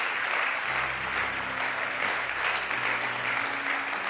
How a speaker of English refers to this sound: Why don't all the home folks give our guests a good hand clap?